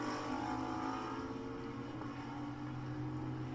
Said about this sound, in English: I'll try to pick those cars out as they come by, and I'll let you know where they are on the racetrack so you can keep an eye on them.